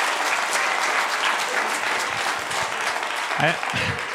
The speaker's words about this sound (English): Oh, yeah. Oh, yeah. They're applauding.